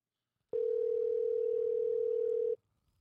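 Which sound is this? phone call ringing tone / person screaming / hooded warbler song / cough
phone call ringing tone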